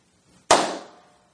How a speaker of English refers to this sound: I usually like to do three claps whenever I record. Oh, really? Yeah, because cool. That way you get three opportunities to line it up just right.